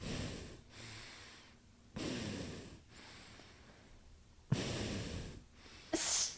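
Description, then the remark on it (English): A person imitates heavy, snorting breathing: three long, rough inhale-exhale cycles with nasal snorts, ending in a short sharp sniff. “I've heard people breathe like that.”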